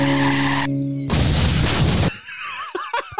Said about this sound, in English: Oh, but the car loses control and flips over like the partition or barrier, fence, whatever.